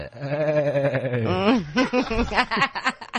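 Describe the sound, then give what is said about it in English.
A voice imitates the bleat of Shaun, a sheep character: a long, wavering, nasal baa that slides and quivers in pitch, loud, breaking into a few shorter shaky bleats at the end. “He's because he's a sheep, you know.”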